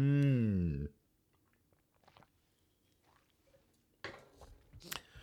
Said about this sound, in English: Yeah, so sip of water real quick.